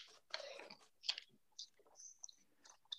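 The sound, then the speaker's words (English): Scissors slicing through wrapping paper from a roll, cutting along a fold: a long crinkly rasp followed by a series of short, crisp snips and rustles, fairly quiet, with no talking. “So I have the inside blade of my scissors against that fold, and then I'm able to just cut it and close them and kind of keep that edge a lot straighter.”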